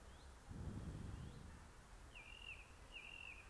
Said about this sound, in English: And the trees are alive with birds and their beautiful songs, and the wood pigeons cooing off to one side.